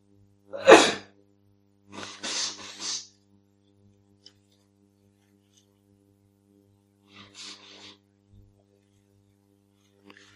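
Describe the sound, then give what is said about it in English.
At a retreat, a sharp, loud sneeze bursts out near the start, followed by a breathy sniffle or exhale and a fainter rustle later, over a low steady hum. “Are our coughs and sneezes ever going to end?”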